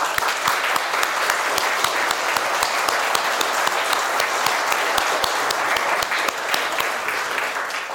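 A crowd applauds steadily for several seconds in support of two children, dense overlapping claps filling the room at an even, sustained loudness with no talking over it.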